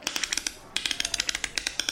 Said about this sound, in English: What's that clicking sound coming from the back of the galleon? Says Grandolf.